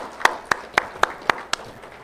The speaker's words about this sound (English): A round of applause for each other for just doing the kingdom, right? Come on.